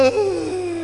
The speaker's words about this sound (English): And then you just have a nice yawn. And there are some people who are very good at yawning.